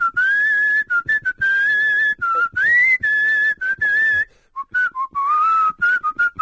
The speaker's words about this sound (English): What's that song I'm whistling? Isn't it a theme to something?